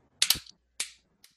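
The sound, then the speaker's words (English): Sharp, bright hand claps with no talking: a quick double clap, followed shortly by a single louder clap and then a faint, softer one. “We might as well do a double clap.”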